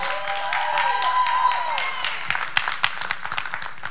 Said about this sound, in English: If you will, stand up with me. If we can go ahead and have of the day come up, give them a good hand clap.